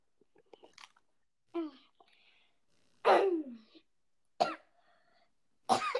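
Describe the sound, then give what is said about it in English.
A woman coughs and sputters from choking on water: four harsh, loud coughing bursts spaced about a second apart, with faint gasping sounds between them and no speech. “Guys, she's not coughing from anything else. She was just choking on some water.”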